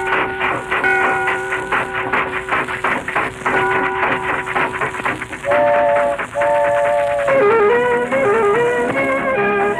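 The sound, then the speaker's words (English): A train pulling away, its whistle sounding in long, loud sustained tones that shift in pitch toward the end, over a steady hiss and rumble of the engine. “All aboard, away we go. Get that little lady on the train, boy.”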